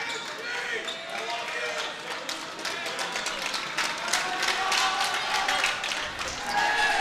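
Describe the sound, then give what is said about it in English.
The Lakers student section crowd cheers at a basketball game in the third quarter: a steady, loud roar of many voices, punctuated by sharp claps and thuds that swell slightly louder toward the end. “The Lakers student section is cheering on the Lakers.”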